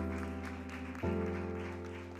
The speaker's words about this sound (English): Hey, listen, keep those claps going because he truly deserves to be praised.